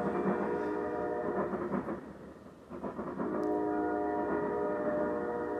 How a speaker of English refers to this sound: You don't have to just hiss, you don't have to just listen to the horn. You gotta listen to the tracks buckling.